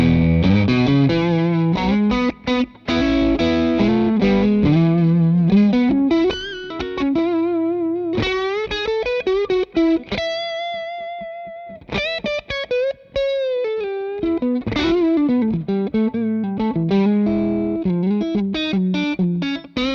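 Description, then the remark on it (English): Distorted electric guitar, played on the bridge pickup of a Clarksdale, plays alone, mixing chugging chord stabs with sustained notes and a brief singing single-note lead line, loud and steady throughout with short gaps between phrases. “Moving over to the bridge pickup on the Clarksdale, same settings.”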